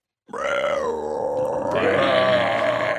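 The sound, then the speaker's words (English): A deep, guttural monster roar erupts abruptly and holds loud for about three seconds, swelling rougher and more intense partway through, with no speech. “You hear the roar just sound everywhere around you.”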